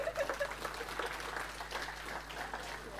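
An audience applauds with steady, dense clapping that holds for about three seconds at a fairly soft, even level, with a few faint voices mixed in.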